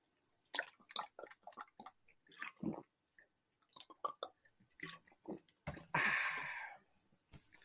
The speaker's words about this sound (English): I gotta take a drink of water because I got a big scratch in the back of the throat right now.